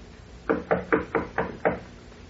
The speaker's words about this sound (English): Ah, here is her suite. I will knock.